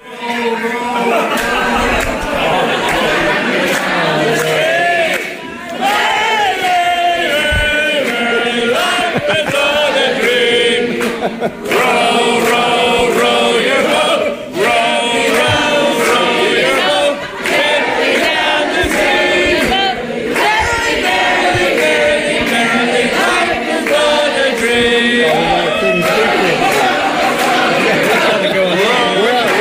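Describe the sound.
A man screams and shouts over a loud, rowdy crowd at a bawdy banquet where wine and pints are flowing, with dense overlapping chatter and raised voices continuing throughout.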